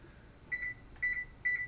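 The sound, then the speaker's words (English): Three short electronic beeps at regular intervals, each a clear high tone with a slight double pulse, from a timer being set as a reminder for cooking eggs, against quiet surroundings. “Sorry, I'm setting a timer so I don't forget my eggs.”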